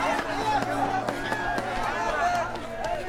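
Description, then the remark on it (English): A steady murmur of crowd chatter fills the scene, with sharp, regularly spaced thumps cutting through like hurried footsteps of people running. Overlapping voices stay constant and fairly loud throughout. “We'll lose ourselves in the crowd.”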